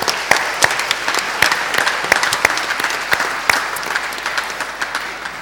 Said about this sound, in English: Do you guys want to take a seat, and we'll give you a round of applause for coming up to help?